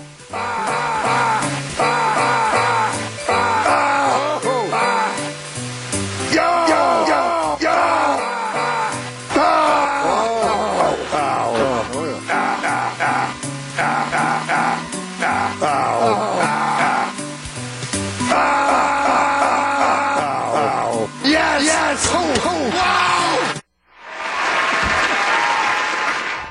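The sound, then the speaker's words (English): Rapid-fire snippets of a broadcaster's grunts, groans and vocal noises from the broadcast booth, spliced together to follow the Jingle Bells tune, choppy and rhythmic, ending with a brief burst of applause. “piecing together 30 minutes of …'s grunts, noises, and whatever else he does in the booth to Jingle Bells.”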